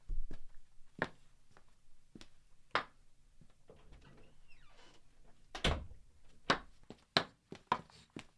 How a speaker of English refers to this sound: Amahl, go and see who's knocking at the door.